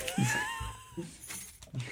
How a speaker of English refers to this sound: I only have ice left in my cup. Oh, great. That's awesome. So you might hear that every once in a while. It's just the ice in my cup.